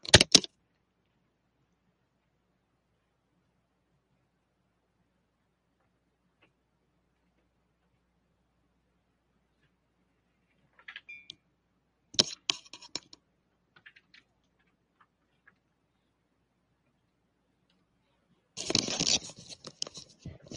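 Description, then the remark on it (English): Scattered clicks and clatters of someone fiddling with a troublesome computer keyboard and mouse, arriving in short bursts separated by long stretches of near silence, with no talking. “Well, I'm having difficulty with my keyboard. Hold on a second.”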